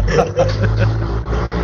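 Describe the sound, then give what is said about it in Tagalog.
A car passes by, its low, steady engine rumble filling the short moment, with some faint human vocal sounds over it. “Dati aso lang yung umi-extra sa atin. Ngayon, sasakyan.”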